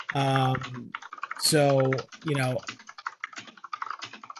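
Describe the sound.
Rapid, clattering keystrokes on a computer keyboard, a dense stream of close, crisp clicks, partly covered at first by loud bursts of voice before the typing continues on its own.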